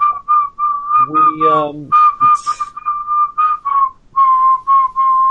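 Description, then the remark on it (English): A whistled film theme played from a vinyl record: a bright, clear whistled melody carries a steady tune of sustained and bouncing notes, with a short burst of a lower, voice-like sound partway through. “What the hell is this whistling shit?”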